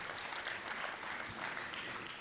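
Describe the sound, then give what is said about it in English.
An audience applauds a young man and lady, giving applause and love to God for them, a dense, steady wash of many hands clapping together at an even loudness for a couple of seconds, with no voices heard over it. “Could you give up a little applause and love to God for them?”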